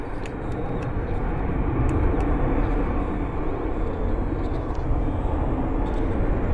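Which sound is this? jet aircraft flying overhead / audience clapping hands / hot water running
jet aircraft flying overhead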